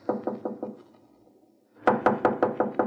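Knocking on a door: four quick raps, a short pause, then a louder, firmer series of six knocks at a steady pace, clear with no voices.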